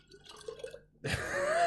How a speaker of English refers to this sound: I don't think I got a single... I don't think you could have poured that any more viscously either. I'm just trying to like really... Oh, I got a pearl!